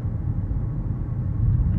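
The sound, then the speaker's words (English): A brand-new Lincoln car gives off a steady, low buzzing drone that holds constant for a couple of seconds, fairly loud, with no voices over it; a noise it made about every 30 seconds, especially on the highway. “That's something going on with my car.”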